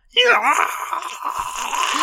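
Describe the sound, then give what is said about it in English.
A voice imitates Sheorg's guttural scream, trapped for millennia in a sound capsule from a plant library: a loud, strained, raspy cry that rises and wavers in pitch, then holds steady for about two seconds without any words. “Yeah, and it's a it's a sound capsule from inside one of the plant libraries, and it opens up it opens up, and then it cuts to black, and you just hear Sheorg's guttural scream that had been trapped in the sound capsule for millennia.”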